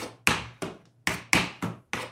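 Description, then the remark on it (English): Tap shoes bought from Amazon making slow shuffle steps: six sharp, bright metallic taps in an uneven rhythm, each with a quick attack and short decay, with no voices. “Listen to those shuffles. They're slow, but they're a shuffle.”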